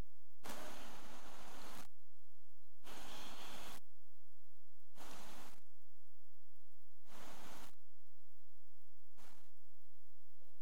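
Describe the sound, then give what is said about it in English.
A man wrings water from a floor-wiping cloth into a jug in five separate splashy gushes, each a second or so long with pauses between, the last one shortest, with no talking. “So what I'm going to ask you to do, Dad, is just squeeze that out as much as you can of water into that jug.”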